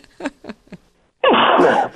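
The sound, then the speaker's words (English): A loud, forceful sneeze bursts out after three short, quick breaths in, the explosive blast of air holding steady for nearly a second before cutting off. “Bless you. Thank you.”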